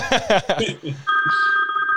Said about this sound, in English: That's not somebody calling in. That's somebody calling my phone right now.